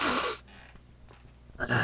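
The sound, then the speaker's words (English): Two loud, exaggerated sniffs separated by a short quiet pause, as if someone is deliberately imitating heavy sniffing. “All you can hear is sniffing.”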